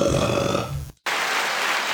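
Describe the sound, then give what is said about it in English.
A loud, drawn-out burp lasting nearly a second, cut off by a brief moment of silence, then a steady wash of broad hissing noise. “Can either of you belch Like burp?”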